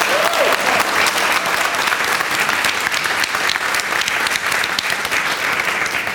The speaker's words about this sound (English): All right, round of applause for this guy, please.